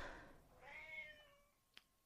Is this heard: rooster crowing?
no